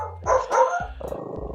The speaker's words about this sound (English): Aw, dogs. I'm so sorry.